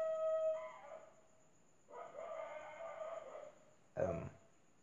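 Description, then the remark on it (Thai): A dog howls in long, wavering tones, pausing between howls, then lets out a short, sharp bark at the end. There is no talking. “เวลาอื่นไม่มาเห่ามาหอเลยตอนนี้ เดี๋ยวนะเดี๋ยวผมขอตัดนะฮะออกไปเห่าเสร็จยังโอเคครับถ้าเห่าเสร็จแล้วเรามาต่อกันเลยครับโอเคหมาเห่าเสร็จแล้วนะฮะ”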